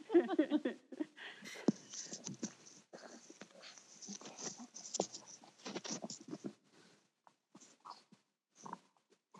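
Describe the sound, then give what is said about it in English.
A puppy whines and yips softly in the background, mixed with scratchy, pattering rustles and small clicks that come in uneven bursts and fade toward the end. “I hear a puppy. Puppy dog trying to speak on our podcast.”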